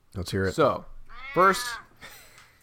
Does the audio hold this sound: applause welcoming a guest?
no